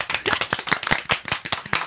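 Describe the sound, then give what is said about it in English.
A round of applause sound effect played by a DJ, a small crowd's dense overlapping claps in a steady, lively patter that stays fairly loud throughout. “That's where you need the DJ to play the round of applause.”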